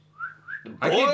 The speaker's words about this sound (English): I can whistle. Can you whistle? Yeah, I can whistle. Show me.